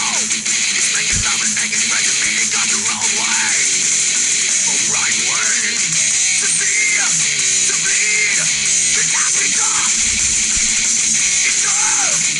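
A heavy metal song blasts at constant high volume: a dense wall of distorted guitars and pounding drums, with a harsh screamed vocal shouting and rising over the top throughout.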